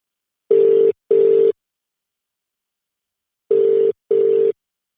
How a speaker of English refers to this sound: Let's see if he picks up the phone.